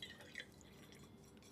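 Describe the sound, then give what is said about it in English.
Gypsy Cold Care tea being poured into a cup: a soft, steady trickle of liquid with faint bright splashes, quiet, lasting a second or two with no talking. “Anyway, what I'm actually here to talk to you about, let me just pour myself some tea.”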